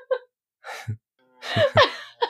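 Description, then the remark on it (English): A sleeping dog, asleep for about the last hour, snores: a handful of short breathy snorts and wheezy, gasping inhales with brief pauses between them, and no one talking. “I cannot promise that some of his snores will not make it into the show because he's been snoring the entire time.”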